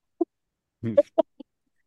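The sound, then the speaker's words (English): A chicken clucks in a handful of short, irregular bursts, fairly clear, with one longer throaty cluck in the middle and a quiet pause after. “A chicken or a rooster?”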